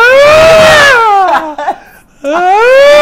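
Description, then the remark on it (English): A voice imitates the terrified scream of a woman on a plane who believed she was going to die: a loud, high wail sliding downward and breaking off, then a second cry starting up again after a brief ragged pause. “And she knew she was going to die, if you could picture that scream. Just absolute terror.”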